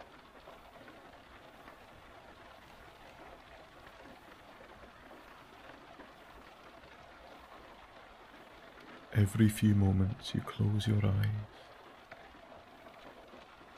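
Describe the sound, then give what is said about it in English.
Rain drums softly and steadily on a car roof by a loch at sunset, a continuous, even patter, with a person briefly speaking over it toward the end. “just listening to the percussive sounds of the rain hitting the car's roof, it's softer than rain landing on the road”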